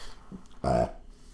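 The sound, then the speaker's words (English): A single loud, throaty burp after drinking Pepsi Max erupts briefly, lasting about a quarter second, with no talking. “Pepsi Max makes me burp to the max.”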